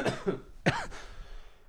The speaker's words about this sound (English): Oh, excuse me, I'm all coughing and stuff. I think I'm starting to get sick again.